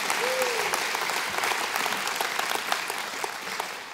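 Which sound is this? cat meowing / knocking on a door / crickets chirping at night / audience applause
audience applause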